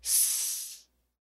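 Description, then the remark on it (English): A voice imitates a fizzing 'hot poop snake' firework, the kind put on the ground, with a single sustained, bright hiss lasting under a second, steady and airy, then cutting off into silence. “You ever play with those hot poop snakes? You put them on the ground and they just go.”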